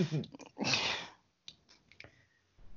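Dice rattle and clatter across a hard tabletop in a loud burst, then a few sharp, separate clicks as they bounce and settle.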